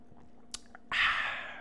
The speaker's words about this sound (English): Little short and sweet, little show for y'all as I sip my Mountain Dew.